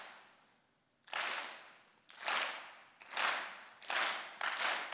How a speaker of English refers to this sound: Everybody do me a favor, everybody clap. One, two, three, clap. One, two, three, clap.